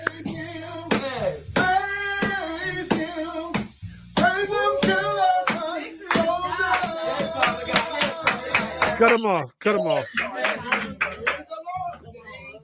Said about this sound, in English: if you watch it and listen to it over again, the brother cuts off the song. He was the first one clapping. Pastor was ready to go in for another verse.